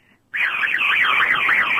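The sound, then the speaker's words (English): A voice imitates a police siren, a loud, steady wailing tone that sweeps up and down in pitch several times in a smooth, repeating rhythm after a brief moment of quiet. “I can do the police siren again.”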